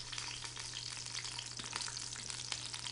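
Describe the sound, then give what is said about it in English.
Steady, crackling sizzle of rind frying in a hot pan as the heat is turned down low, with scattered pops over a constant low hum, moderately loud throughout. “I'm going to turn it down low enough so that that sizzling is going to curb.”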